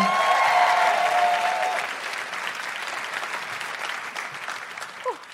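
A burst of audience applause at a live event in Canberra for an audience member, loud at first with a few whoops, then tapering to steady scattered clapping over several seconds.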